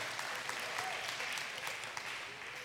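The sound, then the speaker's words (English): A crowd applauding steadily for children who have just come in, a dense patter of many hands clapping at once, with faint voices mixed into the sustained clapping. “Let's clap for our kids. They just came in.”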